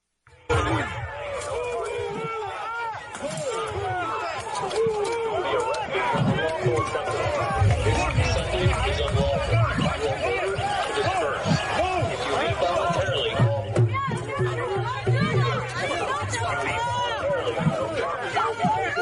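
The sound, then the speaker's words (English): A dense, agitated crowd in Washington Square Park, New York, resisting hundreds of police clearing the park at 10 p.m. on a Saturday evening, some throwing empty water bottles and trash, fills the scene with overlapping shouts and chatter, a steady loud commotion with occasional low thumps and scuffling underneath, lasting throughout. “Many people in the crowd resisted, including some who threw empty water bottles and trash at the cops.”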